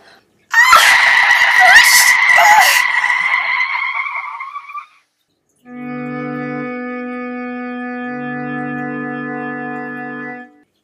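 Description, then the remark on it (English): A car skids and crashes on Route 89 with a loud, shrieking tire squeal and crunching impact noises for several seconds, then after a short pause a steady blaring horn-like tone drones on, dipping briefly in pitch. “So, you were in a car crash.”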